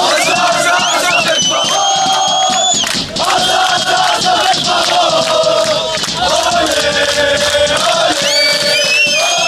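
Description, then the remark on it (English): A large crowd of young Israelis in Tel Aviv celebrates, cheering and chanting together in loud, rhythmic unison that Gaza is a graveyard and there is no school tomorrow, many voices rising and falling in sustained, sing-song shouts with barely a pause throughout. “And these are people like cheering and dancing.”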